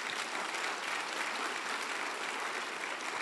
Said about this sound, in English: Clap your hands.